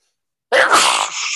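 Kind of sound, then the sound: human body sound, sneeze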